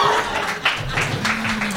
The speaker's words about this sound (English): If you'd like to applaud Adelaide, I believe now would be the time.